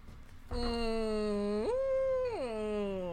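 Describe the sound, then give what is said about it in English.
A voice imitates a dying whale with one long, mournful moan that starts low, swoops up in pitch, holds, then slides back down. Loud and sustained, with no other sounds. “Dying whale noises.”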